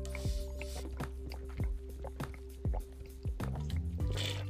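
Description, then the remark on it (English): Water is poured and sipped, sloshing and gurgling, with a series of wet plops and glugs arriving every half second or so, steady and moderately loud, no voices. “Oh, I love water.”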